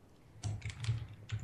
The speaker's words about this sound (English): Sorry, I'm just typing a message.